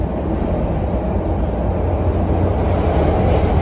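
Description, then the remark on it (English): A Chicago train car rolls steadily along the rails toward Grand and State station on a 15-degree day, a loud, continuous low rumble with faint rhythmic clatter, heard from inside the carriage with no one talking. “So as you saw there, it appears to be all black people sleeping on a train.”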